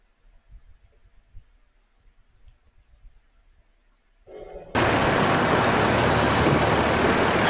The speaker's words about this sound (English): So there's a video here of a four-alarm fire. I'm going to play this. So if you're listening to this as a podcast, be prepared for a lot of noise.